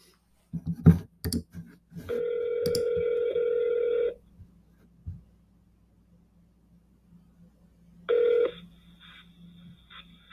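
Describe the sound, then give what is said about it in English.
A few quick clicks as a phone call is dialed, then a steady electronic ringing tone for about two seconds, a long quiet pause, and the ring starting again. No one speaks. “We're going to get Joel Castro on the phone here.”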